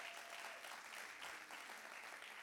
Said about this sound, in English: In Jesus' name, give God a clap offering right there.